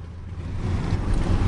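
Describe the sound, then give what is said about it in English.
An old car's engine rumbles low and steady as it accelerates onto the M11 motorway, reaching about 70 miles an hour, the roar building gradually louder over a second and a half, with no voices. “We're going to turn around and head onto the M11 and see how fast we can go.”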